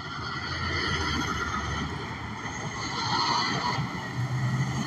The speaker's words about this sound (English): That's some kind of a cement truck. Has a red cab. It's a Kenworth. A Kenworth V. It looks like they had some kind of asphalt, like it's an asphalt truck.